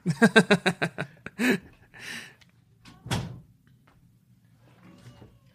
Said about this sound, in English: And I'm going to close the cat door.